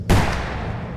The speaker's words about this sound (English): A gunshot rang out in the distance, deep in the woods.